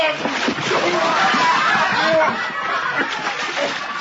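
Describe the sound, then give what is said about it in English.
Heavy, churning splashes as a man is dropped into water, the turbulent sloshing continuing for several seconds while voices and chuckling carry on. “but now we put you in water.”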